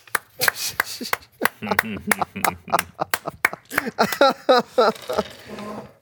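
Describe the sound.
Sharp hand claps ring out in a quick, irregular series, loud and crisp, scattered across the whole stretch while a voice talks and vocalizes between and over them.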